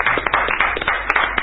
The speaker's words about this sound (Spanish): Tenemos las manos frías para aplaudir hoy. No, ¿eh? Solo las manos.